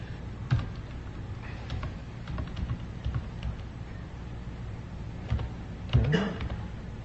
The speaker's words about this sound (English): Debug keystrokes.